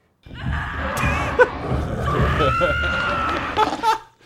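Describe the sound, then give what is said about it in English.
A male character's scream sound effect: a strained, wordless scream rises and wavers across several seconds, loud, with sharper yelping bursts near the end before it cuts off. “Oh, I hate it when my male character scream like that.”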